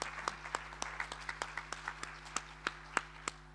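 An audience applauds, a steady patter of many hands with sharper individual claps popping out irregularly above the wash. The clapping stays at a moderate level with no voices.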